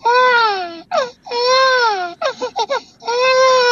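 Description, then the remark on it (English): A person's voice doing a vocal imitation called the baby cry, made by humming, then opening the mouth and going high: loud, high wailing cries that slide downward in pitch, broken up by quick, choppy sobbing bursts before a final long wail. “This one is called the baby cry, and I challenge you to try it.”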